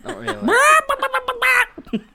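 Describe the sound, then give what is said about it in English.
A person loudly imitates a chicken, starting with a rising squawk and then breaking into a quick run of choppy clucks that trail off. “Or to quote Arrested Development, that was a very good chicken impression.”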